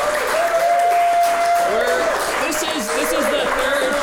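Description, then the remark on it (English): A live show audience at LSI Theater claps steadily and loudly for about four seconds, a dense wash of applause with a voice and a faint steady tone running underneath. “Every show, we have to ask them to start clapping again for a new show.”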